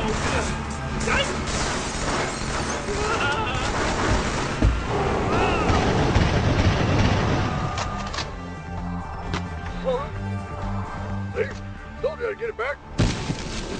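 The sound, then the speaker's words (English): A military jeep smashes loudly through a wall, with a dense roar of engine and crumbling debris for several seconds, then the motor rumbles on while voices and scattered clatter break through. “There was a big debate over what to make the first shot there, and you know, the Warthog crashing through the wall in hindsight just seems like an obvious choice”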